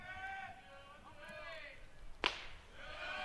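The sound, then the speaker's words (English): A single sharp, loud pop of a baseball smacking into a catcher's mitt on a pitch from Boston to a batter, called ball two, high and out, cutting through a steady murmur, with a voice talking before and after it. “And the clap of the mitt, ball two, high and out from Boston.”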